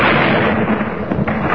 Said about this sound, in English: Bell fired at the precise moment when the bomb exploded. This time the explosion wasn't quite in that next block.